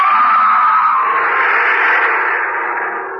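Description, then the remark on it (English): A loud, shrill, sustained scream fills the whole stretch, holding a piercing tone without a break and easing off only slightly toward the end. No one speaks. “It came towards me, and its shattering buildup into a scream, and I was sure that I was going mad.”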